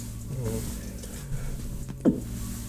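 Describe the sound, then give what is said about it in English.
A single quick sneeze bursts out sharply over a steady low hum, a brief loud puff followed by quiet background noise. “Bless you.”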